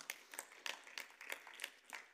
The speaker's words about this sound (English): Somebody give God's word a hand clap of praise in here if you don't mind.